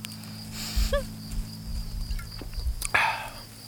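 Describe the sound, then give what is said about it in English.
Several crickets chirp in a steady, high-pitched trill that runs the whole time, joined by a few brief squeaky chirps and a low background hum, with no one speaking. “Do you guys hear that cricket? That's a loud son of a bitch.”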